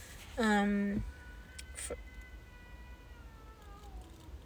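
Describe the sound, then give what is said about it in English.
A female cat growling at someone lets out one loud, low yowling meow, then trails off into a fainter, drawn-out moaning growl that lingers for several seconds. “That's crazy, the cat. Is she? She's growling at someone, huh?”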